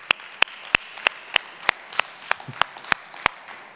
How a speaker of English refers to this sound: Can we join each other in giving a hand clap to those around us who have supported us and got us to this point? Come on.